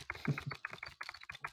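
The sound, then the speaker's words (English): Rapid, uneven clicking on a computer keyboard while checking pricing and availability, a dozen or so sharp taps in quick succession, fairly quiet and with no talking. “I'm clicking away at my keyboard and I'm checking pricing and availability, right?”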